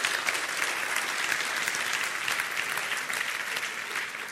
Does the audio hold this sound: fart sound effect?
no